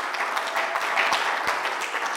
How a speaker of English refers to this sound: Why don't you clap for yourselves?